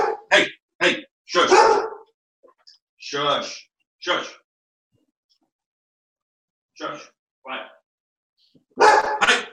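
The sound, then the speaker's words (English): Two big golden retrievers bark in loud bursts, clustered at the start and end with scattered single woofs between, some overlapping. “one second, I got two big golden retrievers barking.”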